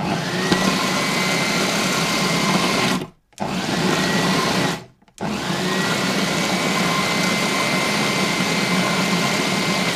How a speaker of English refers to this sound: That was a blender.